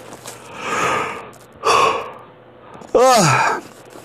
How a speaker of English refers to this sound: Yawn in aisle 4, my friends. Give me a pillow and a blanket. No, I'm just kidding. No way. It's been a long day again, as usual, and a long, long night here, so sorry about that, friends.